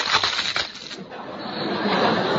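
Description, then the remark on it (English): A crackly crunch of the end of a cigar being bitten off, a quick burst of brittle snaps at the start that fades into a soft, steady hiss. “This thing must be wet. It won't like. Bite the end off it.”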